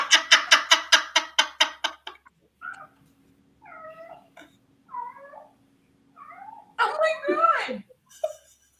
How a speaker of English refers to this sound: The cat, I hear her in the background. I thought it was a bunch of kids playing in the background. No, that's not. That cat.